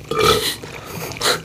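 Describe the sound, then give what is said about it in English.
A fairly loud burp with a throaty, voiced rumble, followed a moment later by a second shorter belch. No talking in between. “Oh, God, I'm burping.”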